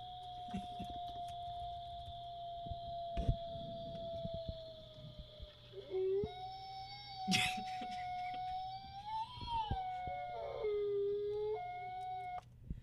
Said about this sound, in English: Okay, so that wasn't quite as what I thought it would be, but those were some howling wolves, of course.